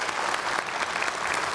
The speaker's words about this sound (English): So I think we need to thank God, give him a response. Let's give the Lord a clap offering. Let's praise his name.